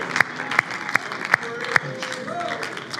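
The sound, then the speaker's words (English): An audience clapping and making a joyful sound of praise to the Lord Jesus Christ, in a steady, even rhythm, five sharp claps standing out above a continuous crowd murmur, with voices calling out and a sustained sung or shouted tone rising underneath. “And would you make a joyful sound of praise to the Lord Jesus Christ.”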